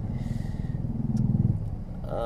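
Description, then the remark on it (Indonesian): Steady low rumble of car and motorcycle engines idling and revving in a traffic jam, with a throbbing pulse and a brief higher tone near the end. “kita kena macet nih.”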